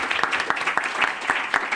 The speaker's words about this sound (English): Can we have a golf clap for Pontus, please?